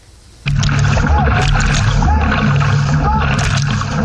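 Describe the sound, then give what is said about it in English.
Asia's largest LGBT dragon boat team, with more than 100 members, paddles on a river in training for the Dragon Boat Festival race; it starts abruptly with a steady, loud wash of splashing water and a low droning hum, with indistinct voices calling out in the background. “With more than 100 members, Asia's largest LGBT dragon boat team has been training on this river for more than 6 years.”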